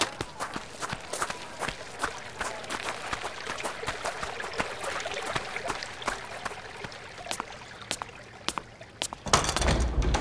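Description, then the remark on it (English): Steady footsteps crunch along a garden path toward a door at a walking pace, fairly loud, with a soft background wash, until a brief louder rustling burst near the end. “Go on ahead now. Just through the gardens and to the door.”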